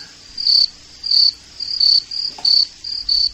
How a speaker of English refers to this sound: Is crickets anywhere? Crickets?